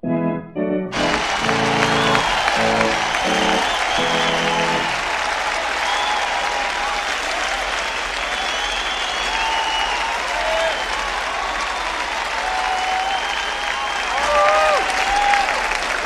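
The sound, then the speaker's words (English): A large audience at the Playhouse bursts into sustained, loud applause with cheering mixed in at the conclusion of the night's show, lasting about fifteen seconds after a brief musical sting at the start. “And a cheer rises from the audience as the applause signals another triumphant conclusion to a night out here at the Playhouse.”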